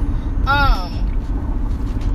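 A car's brakes squeal sharply for about half a second over a steady low rumble of traffic, then the engine noise carries on without the screech.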